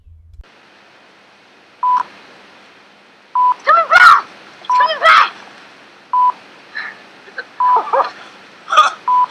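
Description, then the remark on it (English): Radar beeping: short, single-pitched electronic beeps repeat at a steady interval of about a second and a half, while excited voices shout between and over them. “But then there's just also kind of the annoying beeping of the radar.”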